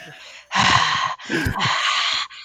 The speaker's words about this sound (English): Oh, I can't talk loud enough. Now I'm breathing too loud. You're talking too loud. Yeah. I'm trying not to. You're breathing in my ear.